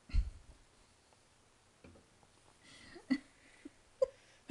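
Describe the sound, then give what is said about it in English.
A drink is set down on a table with a dull clunk at the start, followed by a few faint, scattered clicks and knocks in an otherwise quiet stretch. “Sets down drink.”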